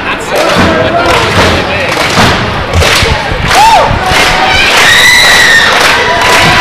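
A loud, dense wrestling crowd roars and cheers continuously during a wrestling match, with rising shouts and whistles, while heavy thumps and thuds of slams land at irregular intervals beneath the noise as a wrestler gets the crowd behind him.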